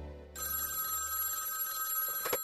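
A telephone bell rings in one sustained, bright burst lasting about two seconds, fairly loud, with no voices and only a low hum underneath.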